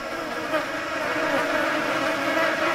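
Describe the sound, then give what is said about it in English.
A dense, steady buzzing of many flies, a continuous droning hum with slight wavering in pitch and no pauses throughout. “They're flies, I guess, but I don't like them.”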